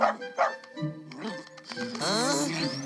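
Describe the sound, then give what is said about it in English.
A mixed-breed dog barks in a couple of quick bursts, then breaks into high-pitched yips and whiny yelps that rise and fall for the last second. “Beasley, no. Stop it! No. Down! Beasley, down!”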